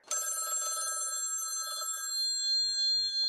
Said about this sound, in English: Hey, it's the studio phone. This should be entertaining.